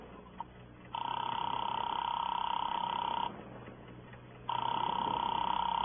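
A telephone call being placed, heard through the handset: two long, steady electronic ring tones separated by a pause, thin and tinny over faint line hiss.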